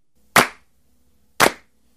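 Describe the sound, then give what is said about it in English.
Two sharp, loud claps from an audience clapping in unison on the host's count on the Bizzaro Radio show, spaced about a second apart in a steady beat, with near silence between them and no talking. “That's good clapping,”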